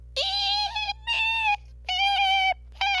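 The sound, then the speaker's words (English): A voice imitates a smoke detector beeping: four loud, steady, high-pitched nasal tones in a row, each lasting about half a second with short gaps between, and no other talking. “That's a terrible smoke detector noise. Beep, beep, beep.”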